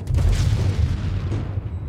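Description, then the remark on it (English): A deep, booming gunshot from the presidential palace in Niamey, with a rolling low rumble that lingers for about two seconds, sounding fairly loud, with no voices. “Just now, I heard a gunshot from the presidential palace.”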